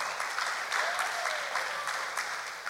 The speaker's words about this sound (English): Come on, somebody. That's a great place to clap.